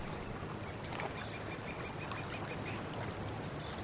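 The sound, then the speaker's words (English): Ducks quack faintly and sporadically on a lake where people are duck hunting, over a steady outdoor water ambience, soft, with no one talking. “they're all duck hunting. HR guy is sitting on a log with Ichabod. They're looking out at the lake”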